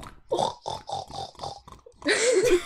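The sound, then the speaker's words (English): A person imitates a pig with a quick run of five rhythmic grunting oinks, then one louder, longer squealing snort. The voice is fairly loud. “No, that farm he had a pig.”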